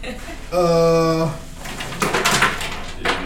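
A drink being poured: a steady pitched drone gives way to a second or so of splashy, clattering noise bursts, fairly loud with no talking over it.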